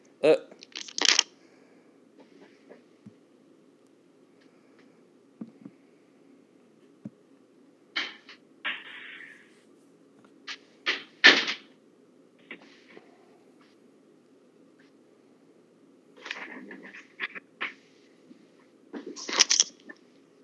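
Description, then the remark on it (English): Glass doors being closed: a series of sharp rattling, sliding clatters in several bursts spread over about twenty seconds, with quiet stretches and a low background hum between them. “Hold on, I gotta close my doors.”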